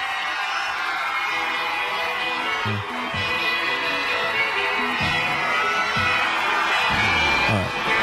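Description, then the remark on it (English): A crowd of children screams and shrieks in a steady, high-pitched roar at a concert, with low thumping beats from the music pulsing underneath throughout. “Hearing screaming children at this concert.”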